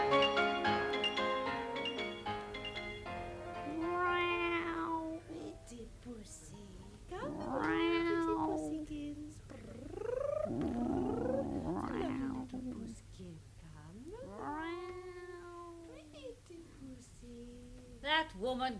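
A cat meows several times in long, rising-and-falling cries spaced a few seconds apart, fairly loud, with a low steady purr rumbling underneath.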